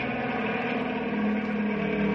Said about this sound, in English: Hey, here comes the helicopter again. There's the spotlight.